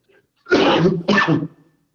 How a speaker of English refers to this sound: Hold on a second. Let me cough here.